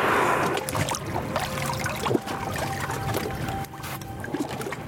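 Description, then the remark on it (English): A whale's breathy exhalation whooshes from its two enormous blowholes as it surfaces in the ocean, a rushing burst at the start that fades into lapping water and a low boat engine hum. “But these whales were regularly coming to the surface, producing those breathing sounds through those two enormous blowholes.”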